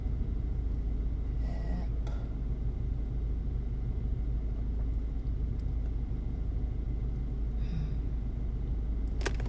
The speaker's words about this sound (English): I should just turn off my engine. This is wasting a lot of gas.